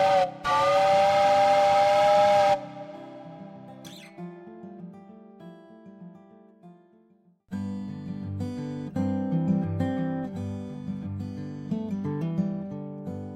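A loud steam train whistle blasts for a couple of seconds, then gives way to the steady rumble and clatter of a large steam train rolling along the track away from geyser fields, with music joining in partway through.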